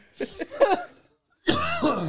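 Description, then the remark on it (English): Three quick coughs in a row, a brief pause, then a longer strained, throaty vocal sound, like someone hacking and clearing their throat after drinking Earthquake Mountain Dew soda. “Is it going to make you cough?”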